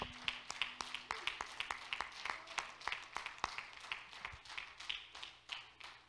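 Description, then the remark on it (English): A church audience claps their hands to the Lord during a sermon, many sharp overlapping claps forming a steady, dense patter that continues throughout at moderate volume, with no voices. “Clap your hands to the Lord if you believe that.”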